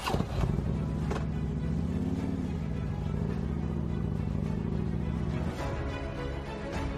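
A motorcycle engine runs with a steady low rumble, its pitch rising briefly then settling as New Jersey state senate candidate Edward Dare rides away on his motorcycle carrying yard signs reading 'Jack for Governor' and 'Edward Dare for Senate', with no voices over it.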